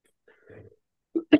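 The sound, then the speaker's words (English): A faint, low throaty rumble, then two short, sharp coughs in quick succession from a sick person, the second one louder and harsher than the first. “I had to cough so badly.”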